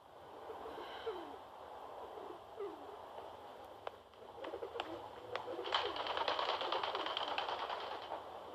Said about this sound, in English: Oh, the doves woke me. I guess they were hungry.